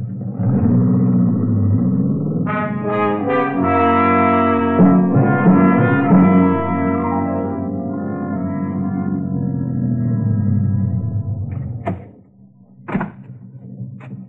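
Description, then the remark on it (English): A car engine rumbles steadily, pitch rising and falling as it draws near, turns into a lane and pulls in, then cuts off, followed by a couple of sharp door thunks. “Somebody's coming. It's a car.”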